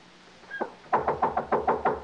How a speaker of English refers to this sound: Anybody here? I'm knocking down the door. Come on, open.